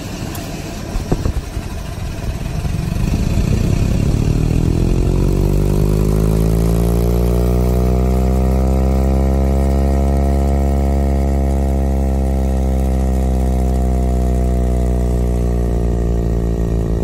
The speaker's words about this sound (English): The air vent in this person's car jumps to hyperspeed at the lightest touch.